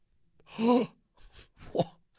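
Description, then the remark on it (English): A man lets out a loud, exaggerated gasp, a theatrical voiced intake of breath, followed by a couple of softer breathy huffs. “still I gasped when I saw that Tua's market value was 6 years, $300 million”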